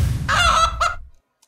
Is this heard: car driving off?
no